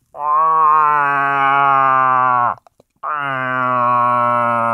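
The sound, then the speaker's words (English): A person imitates a cow moose's whine call for moose hunting: two long, loud, nasal whining moans, each held about two seconds with a brief gap between them, with no talking. “And you can kind of do that into a bugle tube or like a moose call. And then the cows make more of a whine, like a...”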